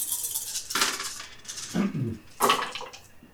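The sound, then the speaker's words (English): Dice clatter and tumble across a hard table in a few quick, rattling bursts, fairly loud, with brief pauses between the rolls and no voices, as players make a willpower plus logic roll. “Broken by the thunder of the dice.”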